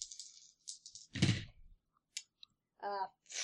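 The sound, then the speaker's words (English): Dice are rolled across a table in a short rattling burst, followed by a couple of small isolated clicks, with a brief voice sound near the end. “Yeah, none of those are good dice.”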